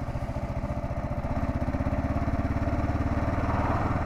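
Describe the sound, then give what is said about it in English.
A motorcycle engine chugs in heavy traffic with a loud, steady, low rhythmic rumble that quickens slightly and holds for a few seconds, with a faint clattering edge and no voices. “This is a lot of traffic, man.”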